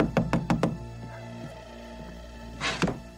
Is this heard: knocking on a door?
yes